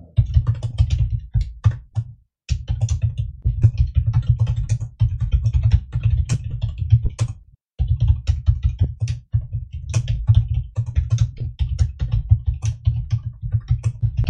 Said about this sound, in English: I'm a decent typer in speed, but I pound this keyboard to death.